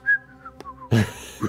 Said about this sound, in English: Stealthily whistling.